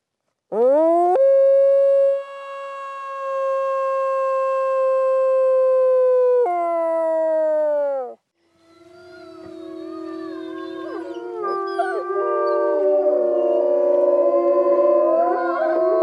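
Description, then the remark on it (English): One wolf lets out a long, loud sustained howl that bends downward at the end, then several other wolves join in a wavering, overlapping chorus of howls that builds and continues. “What is the significance of the howl? They use it to mark territory.”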